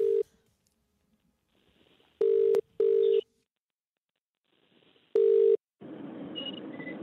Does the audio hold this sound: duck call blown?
no